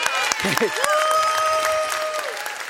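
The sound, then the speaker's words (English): An audience claps steadily, a dense crackle of many hands with a few sharper claps standing out, over sustained held tones and a murmur of voices. “I'm going to preach to this side because they're clapping.”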